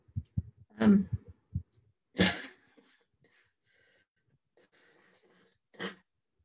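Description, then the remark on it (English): Several harsh coughs from a person with COVID burst out, a quick cluster at first, then a longer hacking cough and one final cough after a quiet pause, with no talking. “There you go, perfect example of the cough.”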